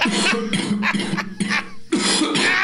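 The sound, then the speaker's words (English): A loud wet hacking cough in a run of several harsh, phlegmy bursts, with brief ragged gasps between them and no talking. “Now, if you will excuse me, I have a wet hacking cough to deliver on the air.”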